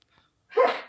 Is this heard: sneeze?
yes